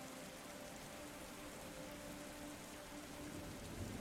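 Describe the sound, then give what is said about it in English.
Heavy rain, grown from a mist into a deluge, pours down on a street in a dense, unbroken hiss, a steady downpour with no pauses or individual drops standing out, and no voices over it. “You step to one side as a cluster of drunken revelers stagger down the way, arm in arm, their cheer not dampened in the slightest by the rain, which you've noticed has well and truly graduated from a mist to a deluge.”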